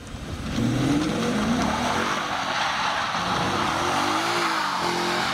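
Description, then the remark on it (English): A car doing burnouts at sunset during a film shoot: the engine revs hard and loud while tires squeal and skid in a sustained, noisy burnout, with rising and falling engine pitch over a broad roar of rubber on pavement, the tire rubber shredding off down to the rims. “We did so many burnouts that the rubber was shredded off the tires right down to the rims.”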